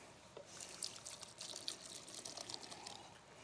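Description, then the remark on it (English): Wine pouring steadily into a drinking glass, a soft continuous splashing trickle lasting a few seconds, fairly quiet, with no voices. “Okay, so each of these different styles, and the Lord wants to pour the wine, his spirit, into each of them.”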